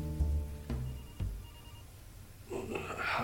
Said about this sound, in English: I was laying on the floor, and my cell phone had fallen out of my pocket, lying in front of me, ringing incessantly.